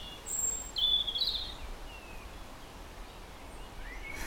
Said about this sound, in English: There's always birds having a go at each other here, brawling in the village square. Chasing each other, right on cue there, chasing each other up and down. Courting.